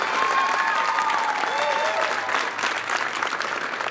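A steady round of applause for the winner of the Caught in the Act Award at UW-Stevens Point, dense and sustained clapping from a crowd for the full stretch, with a few faint whistles or cheers rising above it.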